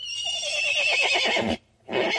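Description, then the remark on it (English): A horse whinnies loudly, a long shaky neigh lasting about a second and a half, followed by a short pause and the start of another snort or whinny. “And here's a horse.”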